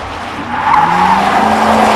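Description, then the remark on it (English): A speeding ice cream truck skids past, almost hitting a car, its tires squealing in a sustained, loud screech over a roaring engine that swells and holds for a couple of seconds, with no voices. “That truck almost hit us. Why was it even speeding in the first place? It's a fucking ice cream truck!”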